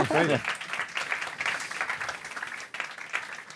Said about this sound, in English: Keep clapping, they've got to get on stage. Keep going.